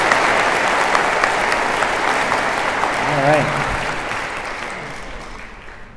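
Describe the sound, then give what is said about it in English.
An audience claps steadily, a dense and loud wash of applause that tapers off slightly toward the end, with a man's voice briefly speaking over it midway. “You can clap louder. You can do better than that.”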